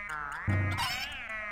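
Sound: cat meowing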